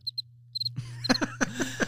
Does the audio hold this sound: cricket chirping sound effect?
yes